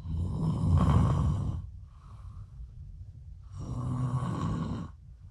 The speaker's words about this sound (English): Is it me snoring? You're snoring so loud.